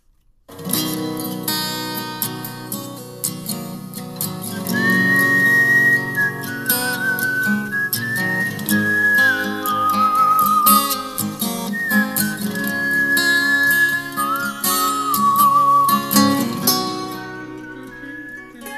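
A whistled melody wanders in steady, tuneful phrases over a busy instrumental backing, fairly prominent in the mix. No one speaks.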